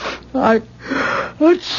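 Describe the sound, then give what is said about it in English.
A loud, voiced sneeze: a sharp vocal burst, a breathy rush of air, then another short, pitched burst. No other sounds around it. “God bless you.”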